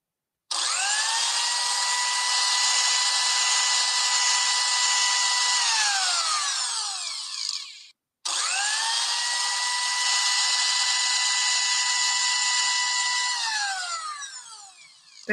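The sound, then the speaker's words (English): A blender motor whirs loudly in two long runs, each holding a steady high-pitched whine for several seconds before winding down and cutting off. No one speaks. “So that's why you have to dump your ex in a blender.”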